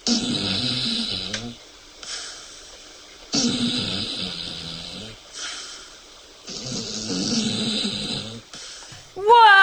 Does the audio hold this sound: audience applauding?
no